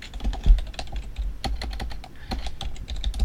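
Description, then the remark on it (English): A rapid, irregular flurry of hard plastic clacks, chunky dice tumbling and knocking together, with no talking for about three seconds. “Chunky dice. The new sound of dice. Clack, clack, clack, clack, clack.”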